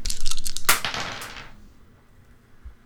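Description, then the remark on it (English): Two dice clatter and rattle across a hard surface, a quick burst of sharp clicks and knocks that tumble for about a second and a half before settling into quiet. “I'm going to give it 3 points too, and I'm going to roll 2 dice.”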